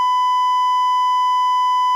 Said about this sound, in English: Wait for the beep, and then speak.